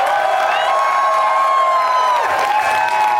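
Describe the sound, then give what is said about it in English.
A live audience in Boston applauds and cheers loudly and continuously, with whoops and shouts rising over a dense wash of clapping that fills the whole stretch. “And thank you to everyone, all my Boston friends, for coming out today. You're an amazing crowd.”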